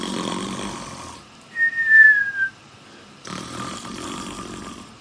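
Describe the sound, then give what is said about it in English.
A voice imitates snoring, fairly loud: a raspy, noisy inhale, then a thin descending whistle, then another long rasping snore. No words are spoken. “If you don't know what snoring means, it's kind of go, it's when you go.”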